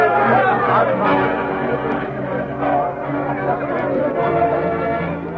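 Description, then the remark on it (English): A crowd celebrating Bob Keller's election as sheriff chatters and cheers in a steady, dense wash of overlapping voices, loud and unbroken, with no single speaker standing out. “But unknown to the crowd that celebrated Bob Keller's victory, the Lone Ranger and Tonto were concealed from view by the weather-stained wall of the livery stable.”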